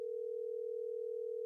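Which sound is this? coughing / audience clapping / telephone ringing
telephone ringing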